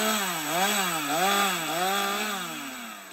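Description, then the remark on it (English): A chainsaw runs steadily, its loud buzzing engine pitch dipping and rising repeatedly as it bites into wood, cutting firewood on a farm, with no voices present. “be it using our chainsaws to take out firewood or planting the next generation”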